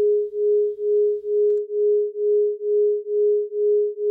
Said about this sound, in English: When two tones, or notes, which are very close to one another, are played at the same time, there's this fluctuation in the sound, a kind of wuh-wuh-wuh-wuh, a bit of a tremolo effect. That is a beat.